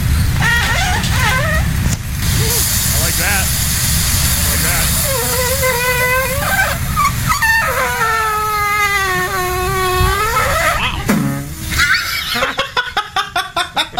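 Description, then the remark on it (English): A waffle maker, recorded in the YouTube video 'Waffle Poots', lets out a series of high, squeaky toots that bend up and down in pitch, including one long wavering squeal, then ends in a rapid burst of short pulses. Voices chatter underneath. “Again, the video called Waffle Poots, somebody recording their waffle maker as it makes squeaky toot noises.”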